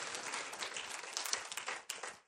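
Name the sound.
audience applauding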